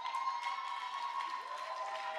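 Steady applause and clapping from an audience for the millennials, a dense continuous patter, with a sustained organ-like tone holding underneath throughout.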